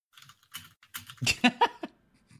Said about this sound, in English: Typing.